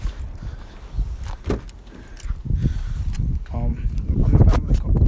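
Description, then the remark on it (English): A car door scrapes against concrete, with sharp clattering and jingling bursts and a rough grinding texture, over steady outdoor background noise and some faint muffled vocal sounds. “My car, my door scraped in the concrete.”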